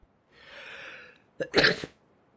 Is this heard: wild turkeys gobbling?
no